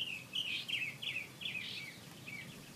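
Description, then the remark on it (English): A single bird in a backyard sings a rapid series of bright, warbling chirps and trills, repeating phrase after phrase without pause, clear over a faint low outdoor hum, recorded from a distance. “That was actually recorded right out in my yard.”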